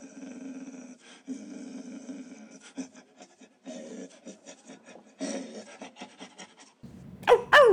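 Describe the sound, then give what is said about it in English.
A person growls like a dog in a long, raspy, throaty rumble broken into several bursts, fairly loud, ending with a sharp higher-pitched snarl. “do you have that dog in you?”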